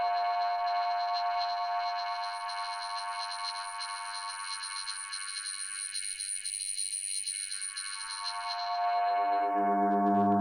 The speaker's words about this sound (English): You know, so it's kind of cool to know that it can make its own feedback tones for you to sculpt with, which are pretty interesting.